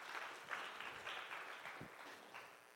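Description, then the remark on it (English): An audience claps steadily for a few seconds, a dense, even patter of many hands with no clear individual beats, fairly soft and continuous throughout. “Come on, you should clap to that, because that is really, really good.”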